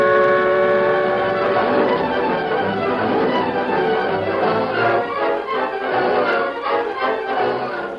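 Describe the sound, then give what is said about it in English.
A train moving fast rolls steadily along the rails, a loud, continuous rumble that fills the whole stretch, with sustained whistle-like tones ringing over the clatter. “We're pulling ahead now, Tonto. Train go plenty fast.”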